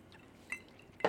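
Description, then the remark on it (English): A drink is poured with a soft liquid trickle, then glasses clink together twice in a toast: a light tap midway and a brighter, louder clink at the end. “Yeah, these are some glasses we picked up along the way.”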